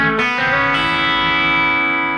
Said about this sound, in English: You go on the land on the 1 there, and then you play the open B string, and then after you play the open B, then you hammer on to the 3rd again. Yeah. And then you play the open E.